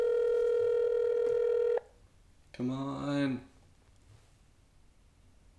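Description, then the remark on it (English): A steady electronic phone tone sounds loudly for almost two seconds, like an outgoing call ringing through, then cuts off and a man briefly speaks. “They just don't answer the phone.”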